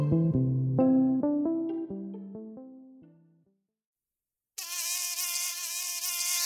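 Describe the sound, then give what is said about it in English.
A short descending musical phrase fades to silence, then a steady mosquito whine starts abruptly and buzzes continuously through the last two seconds. “not all mosquitoes are malarial, obviously, yes?”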